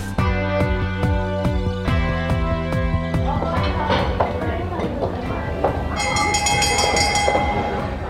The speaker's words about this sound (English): That's the dinner bell, which means it is time for our dinner party question.